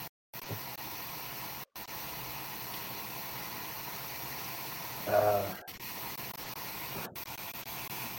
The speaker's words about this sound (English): Hear a lot of staticky background noise. Where is that static coming from? I think it's Doug. You mean this is sound? Yep. That's my lighter.